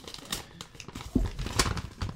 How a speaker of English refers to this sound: Oh, letter inside a letter. Do you guys like the noise of the ripping of the paper?